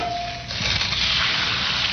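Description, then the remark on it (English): An egg hits a hot pan and starts frying, as in the 'This is your brain on drugs' anti-drug ad. A steady crackling sizzle begins abruptly after a brief faint tone and continues evenly to the end, with no voices. “An egg frying is correct.”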